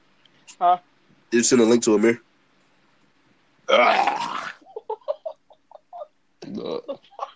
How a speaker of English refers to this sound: I had to clear my throat, man.